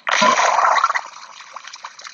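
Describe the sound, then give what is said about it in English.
A loud hissing, splashing gush of acid in a video game for about a second, then quieter scattered drips and small sizzles trailing off, with no one speaking. “Oh, the acid's dripping.”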